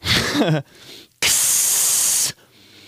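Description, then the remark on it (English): A voice makes a short vocal sound, then after a pause imitates spraying Raid bug spray with one loud, steady hiss lasting about a second before cutting off. “I'd spray you with fucking Raid.”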